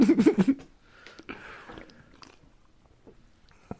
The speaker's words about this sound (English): Oh, yeah, I slurped the shit out of that.